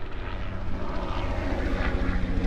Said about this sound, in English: I'm not sure if you hear a helicopter. It's a very loud helicopter. Goodness. But yeah, that was a lot of noise.